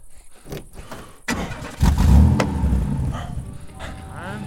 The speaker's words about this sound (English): start the car and drive. Go.